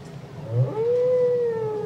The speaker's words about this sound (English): It is sung by the male. He'll sing anywhere from 6 to as long as 30 minutes and then start again. In the ocean, the other whales will pick up the song and pass it on. The songs change every year, and we still don't know what purpose they serve.